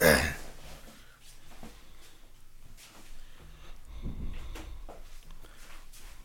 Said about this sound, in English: I feel like I should close the door. Yeah, why not?